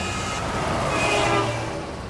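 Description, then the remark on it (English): Steady, loud rumble of heavy transport truck traffic crossing the Sino-Korean Friendship Bridge over the Yalu River in Dandong, China, swelling slightly midway as a large vehicle passes, with a broad hiss of engine and tire noise throughout and no voices. “That bridge is one of the few ways to access North Korea and sees a steady stream of transport trucks.”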